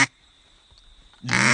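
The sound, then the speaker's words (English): A lonesome hen quack blown on a duck call: a loud, nasal, drawn-out quack after a short silence, with the tail of an earlier quack clipped at the very start. “And what about, what's the other calls I need to know? Lonesome hen.”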